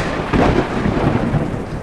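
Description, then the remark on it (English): A loud thunderclap that cracks open sharply and then rolls into a dense, sustained rumble, full with no voices present. “And then the thunderclap is a separate thing.”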